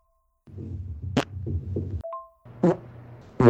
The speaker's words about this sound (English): There's 20 minutes of farts and on this file alone. Oh, shit. Oh, no. This is even better than just one guy. It's five individuals began and continued to collect their farts.